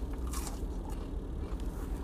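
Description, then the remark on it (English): Crunching and chewing as someone eats chicken nuggets, with a few short crisp bites over a low, steady background rumble and no talking. “If y'all hear me crunching in your ear and shit, we'll call this fucking High Hopes Munchies”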